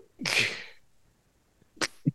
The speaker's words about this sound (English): yeah, just one of those sneezes that's not even recognizable as a sneeze. You're like, did he just cough or what happened?